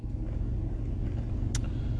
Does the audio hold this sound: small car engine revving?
yes